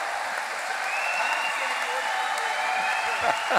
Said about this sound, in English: I see some men clapping.